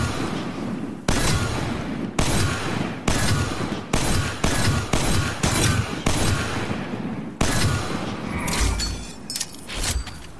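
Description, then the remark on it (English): A video game PvP hand cannon firing 120 rounds per minute fires about a dozen loud shots, each a sharp metallic snap with a ringing tail, spaced about a second apart before quickening midway. No voices. “Sounds like just snapping metal each shot with it.”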